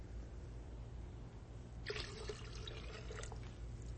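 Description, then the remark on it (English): After a quiet stretch with low hum, water suddenly splashes and spills out of a cup, a loose trickling pour with small splatters that continues for a couple of seconds. “Aren't you going to try and hit me, knock me around, get me to spill some of the water out of this cup?”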